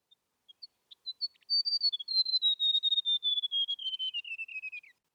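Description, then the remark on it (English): A few scattered high chirps lead into a long, rapid trill of sweet, high-pitched notes from a white-throated gerygone, an Australian bird, sliding gradually downward in pitch over several seconds, then stopping abruptly. “We also used the unique descending notes of another Australian bird, the white-throated jerigani, as an element.”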